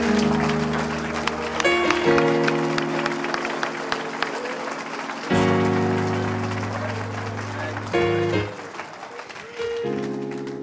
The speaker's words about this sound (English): Let's clap our hands unto the Lord and acknowledge Him tonight. Amen. Thank you, Jesus. Praise God. Let's do it right. Clap your hands like you really, really mean it today.